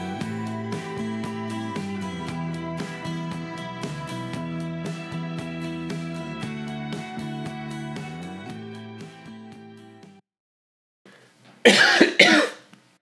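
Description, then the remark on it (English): Music plays steadily and then fades to a brief silence, followed by a loud burst of two or three harsh, choking coughs at the very end, from someone whose water went down the wrong tube. “Water went down the wrong tube. I was waiting for you to finish. I was like, I got to cough so bad.”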